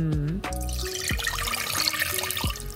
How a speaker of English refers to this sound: This is my favorite part. Now I'm going to pour the syrup over the bread and raisins.